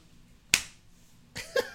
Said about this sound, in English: And then the beautiful arm slap here.